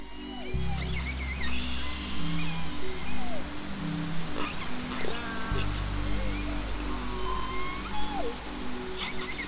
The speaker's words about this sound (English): Baby resident killer whales learn their pod dialects from their mothers and their close kin.